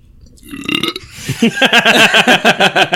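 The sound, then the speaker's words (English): A loud burp right into the microphone, starting with a low rumble and stretching into a long, croaky belch with a rapid rattling pulse. No one talks over it. “Who burped? You did. You just didn't look away from the microphone like … did.”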